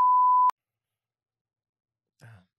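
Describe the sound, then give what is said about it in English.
A loud, steady half-second censor bleep at a single pitch cuts off abruptly, followed by a pause and a brief fragment of a voice. “I'm just gonna beep it.”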